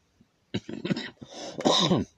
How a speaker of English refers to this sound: excuse me, I got a little cough today.